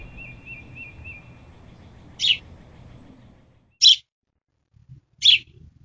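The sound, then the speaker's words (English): Three short, bright chirps from birds nesting outside on a windowsill under an air conditioner ring out about a second and a half apart, clear, over a low background rumble that drops away midway. “Who wants to wake up every morning at 5 a.m. to hear them chirp?”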